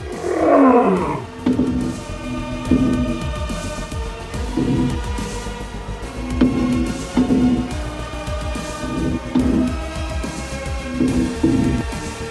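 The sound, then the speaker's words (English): A giant lion roars powerfully in the distance, opening with a loud burst and then rumbling on in repeated deep, throaty grunts at a steady rhythm, with no talking throughout. “So a giant lion? A giant, yeah, really, really loud.”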